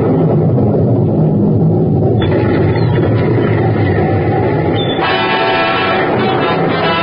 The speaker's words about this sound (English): The storm had struck with tropical suddenness, and now its fury increased as though all of Africa were aboil. The waves lashed high, the boat lurched violently, and the men were swept from its deck.